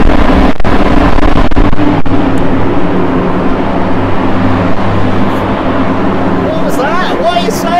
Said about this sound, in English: I'm now in a wind tunnel!